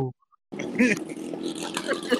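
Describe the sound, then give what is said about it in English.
A brief vocal sound, a short pause, then a voice imitates a revving motorcycle engine with a raspy, buzzing rumble and rising pitch sweeps, loud for under two seconds. “Motorcycle.”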